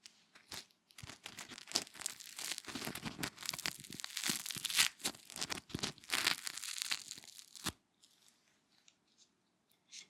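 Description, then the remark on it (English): Dry, crackly scraping of fingers running over crunchy toast, a steady run of rough crunchy rasps, stopping abruptly near the end, followed by a few faint ticks. “I like my toast super crunchy, but I know some people like it really soft and smothered in butter.”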